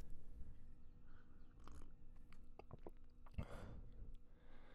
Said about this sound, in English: And I'm just going to have a sip of my tea now.